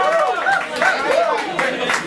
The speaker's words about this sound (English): And do me a favor, please give a big round of applause for Santa Claus up in this motherfucker.